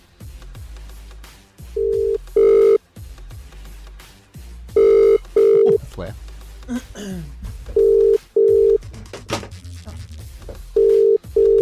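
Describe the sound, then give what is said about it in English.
An outgoing phone call to Kyle Sandilands rings on the line with a repeating double-burst ringback tone, about four cycles, clear and steady, while faint voices and background noise murmur between the rings. “He's not going to answer.”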